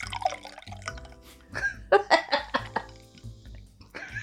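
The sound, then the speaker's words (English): Liquid pours into a shot glass, a run of gurgling, dripping splashes that swell midway and then trail off into a few faint drips. “Here, pour me a shot.”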